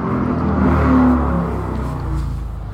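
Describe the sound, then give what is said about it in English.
An engine revs steadily for a few seconds, a loud, low rumbling drone with a rising whine partway through, like a motorcycle idling and throttling up outdoors. “Man, this motorcycle guy's annoying.”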